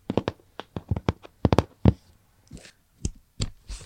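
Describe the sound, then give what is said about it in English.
Sketchbook pages being turned: a quick run of soft taps and handling noises, then several brief papery swishes, all fairly quiet with no talking. “Turning the pages.”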